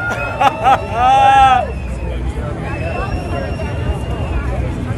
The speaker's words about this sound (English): Then not too long after that, what the people at the Iowa State Fair saw was Donald Trump doing a flyover with his plane.